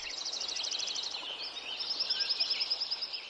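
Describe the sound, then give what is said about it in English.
A dense, lively chorus of birdsong fills a mountain meadow forest at Lincoln Meadow, Yuba Pass, California, before the forest was logged, with rapid repeated trills and chirps overlapping over a soft natural ambience. Several birds call at once, with no voices. “An example of this is Krause's recording of Lincoln Meadow at Yuba Pass, California. Here it is before the forest was logged.”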